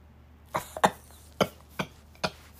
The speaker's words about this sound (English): Sorry, guys, I'm coughing.